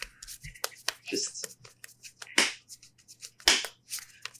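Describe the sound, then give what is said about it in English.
Quick, sharp slaps of fingers against the backs of the wrists on each hand, made as bat sound effects, several dry smacks in an uneven rhythm with two louder hits standing out, alongside faint breathy background sounds. “Hit my fingers to the back of my wrist on each hand.”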